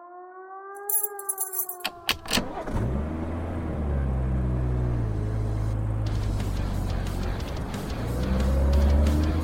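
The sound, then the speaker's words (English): A brief siren wail opens, then a loud, steady rumble of car traffic takes over, engines droning and humming, swelling slightly toward the end with no one talking. “Was hoping to avoid the traffic.”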